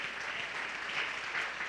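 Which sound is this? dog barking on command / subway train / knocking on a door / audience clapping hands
audience clapping hands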